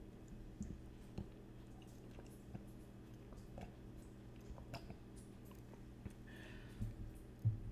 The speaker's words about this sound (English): Are you ready to figure out what that sound was? It was water. I was drinking a cup of water.